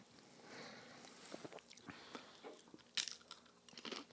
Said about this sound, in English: Hold on, I got to take another sip of A&W.